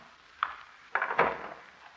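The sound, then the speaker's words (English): A woman unlocks three different locks to open a door: a single sharp metallic click, then a quick cluster of rattling clacks and clunks, fading into quiet hiss. No one speaks. “Casey, she's unlocked 3 different locks to open that door.”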